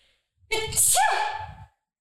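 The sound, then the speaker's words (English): A single loud, voiced sneeze, brought on by spring allergies, bursts out suddenly, with a sharp hissing peak in the middle and a tonal vocal tail, lasting about a second before quiet returns. “Yeah, it's spring and I have allergies, so I sneeze.”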